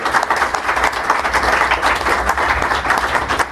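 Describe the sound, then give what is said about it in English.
A live show crowd applauds Patreon backers standing up in the audience, steadily, a dense wash of many hands clapping at once, loud and sustained throughout with no pauses and no voices rising above it. “Stand up! Be applauded by the rest of the crowd.”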